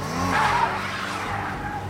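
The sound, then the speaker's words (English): A car skids hard and careens off the road, its tires letting out a high squeal over a loud, rushing engine roar that stays steady for about two seconds. “One car careened off the road, then tried to run over the park rangers when they approached on foot.”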